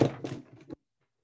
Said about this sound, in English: Hey, knocked over the camera.